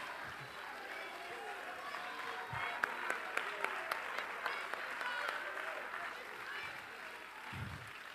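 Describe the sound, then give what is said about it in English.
A large crowd at a church worship service claps and cheers steadily in a reverberant gymnasium, with some sharper individual claps standing out in a rhythmic run partway through and voices shouting beneath the applause. “Worship also involves not only clapping, which is excitement, and not only shouting, which is exclamation.”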